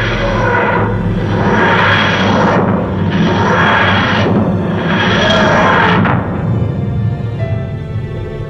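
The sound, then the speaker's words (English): A grating, wheezing materialisation sound effect as a small blue box, the TARDIS police box, flickers into existence: loud, rhythmic rising-and-falling swells of harsh, rasping noise over a low mechanical drone, repeating several times before fading slightly at the end. “With a grating, wheezing noise, a small blue box flickered into existence.”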